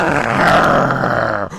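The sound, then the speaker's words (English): A person gives a loud, sustained growling roar, voicing an aggressive lion for about a second and a half before it cuts off abruptly. The rough, throaty sound fills the moment alone. “Roar. Really aggressive.”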